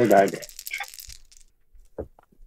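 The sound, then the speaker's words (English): A brief voice at the start, then dice clatter and tumble across a tabletop in a quick burst of clicks, followed by a few scattered taps as they settle, as damage is rolled in a tabletop role-playing game. “So you have four dice damage.”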